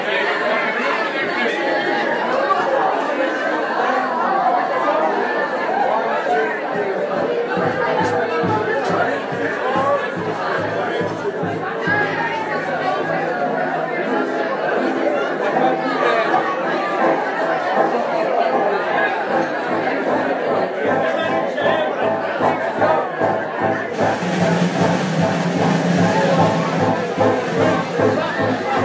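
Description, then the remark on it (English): A dense, lively crowd chatters continuously, many overlapping voices forming a loud, busy babble with no pauses, its energy rising into a brighter, noisier swell near the end. “There's no way this crowd is going to be quiet. They're so excited.”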